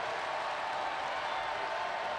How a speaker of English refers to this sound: The crowd getting riled up here in Gill Coliseum. They want another shutdown.